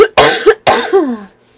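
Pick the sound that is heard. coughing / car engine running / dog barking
coughing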